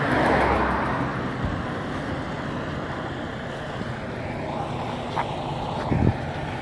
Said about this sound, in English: There's a whole bunch of truck, it's 18 wheelers. There's like 1, 2, 3, 4. 1, 2, 3, 4, 5, 6, 7, 8, 9. There's 9 18-wheeler trucks right here. I'm walking by.